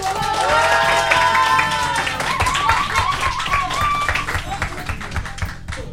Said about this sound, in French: Bravo. Est-ce que vous pourriez, s'il vous plaît, vous applaudir de fou ?